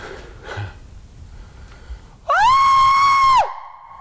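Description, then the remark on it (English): A person lets out a single loud, sustained scream-like howl imitating a Sasquatch scream call, rising sharply then holding a steady high pitch for about a second before cutting off, after some soft breathing. “Surprised I can do that. Born Sasquatch talker.”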